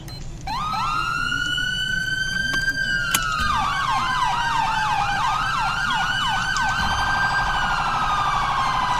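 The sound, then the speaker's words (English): A loud police car siren starts with a long rising wail, then switches to a rapid yelp of quick up-and-down sweeps before easing back into a slower wail. “Try these sirens.”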